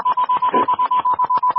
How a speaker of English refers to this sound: When you hang up, the phone should automatically put out a high-pitched beep and deafen bastard. Mm-hmm. You mean like this?